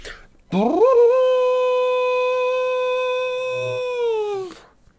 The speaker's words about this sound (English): As he came to the valley's brink, he set to his lips a great black horn and blew a ringing blast.